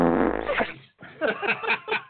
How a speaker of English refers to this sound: Yeah, give him a little fart sound. Yeah. A little going away kiss.